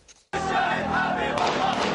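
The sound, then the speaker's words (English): At a funeral in Lebanon, after a brief quiet moment, loud gunfire fired into the air as a mark of respect erupts abruptly and continues without pause, dense crackling mixed with a roaring, shouting crowd. “That gunfire, all going into the air as a mark of respect at this funeral.”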